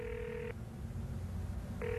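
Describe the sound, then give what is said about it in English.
A telephone ringback tone sounds in two bursts as a landlord in his office calls a businessman, one burst at the start and another near the end, steady and electronic over a low background hum, with no one speaking. “Well, let's see if he answers the phone this time.”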